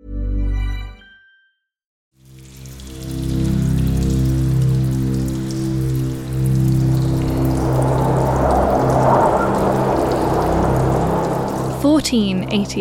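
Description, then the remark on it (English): After a brief silence, heavy rain hisses in a steady, dense wash, with low sustained moaning tones of howling wind beneath it that swell toward the end, on a dark, stormy night in North Yorkshire, the rain driving horizontally. “It's a dark and stormy night in North Yorkshire. The wind is howling and rain drives horizontally across the landscape.”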